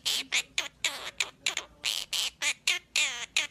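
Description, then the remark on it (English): A baby bird squawks in a rapid series of about a dozen harsh, high-pitched calls, fairly loud, each burst short with brief gaps, forming a repetitive, insistent rhythm. “It's just a bird making a bird noise, but it's going to sound very, very familiar to you when you hear it.”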